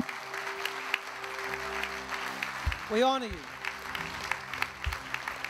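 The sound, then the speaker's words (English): A large audience claps steadily and continuously for the mothers and grandmothers standing up, a dense wash of applause while a man's voice rises briefly over it. “Come on, let's give them a big clap.”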